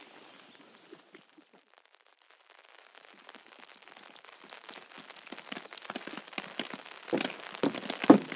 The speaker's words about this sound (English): It started raining again. These Atlantic rainforests, as it were, have their impact on us.